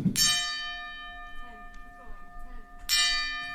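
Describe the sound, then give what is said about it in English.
A bell tolls twice, about three seconds apart, as part of a 10-bell salute. Each loud strike leaves a long, bright, shimmering ring that slowly fades, with faint voices murmuring between the strikes. “they're really butchering this fucking 10-bell salute”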